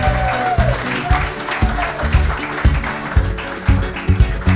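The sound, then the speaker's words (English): An audience claps and cheers steadily for several seconds as panelists Andy Chiodo of TSN and Scott Wheeler come out, dense crackling applause over a thumping low rhythmic beat, with a brief whistle-like tone near the start. “Make some noise.”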